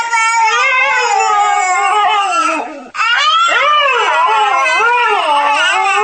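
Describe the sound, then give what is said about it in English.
A husky's wavering howls trade off with a baby's loud crying as the two imitate each other, the voices rising and falling in long, continuous wails, with a brief pause midway. “The top 3 coming up after the husky and the baby go at it imitating each other again.”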